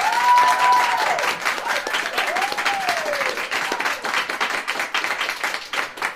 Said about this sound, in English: And we have a small in-studio audience. We want to have a chance to just clap our guts out.